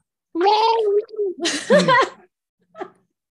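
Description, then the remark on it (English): A person vocally imitates a gurgling, muffled roar: a sustained throaty tone breaking into a rough, bubbling growl, then a short faint grunt after a pause. “You all hear sort of like a gurgled, muffled roar, and you turn. Can you make the noise?”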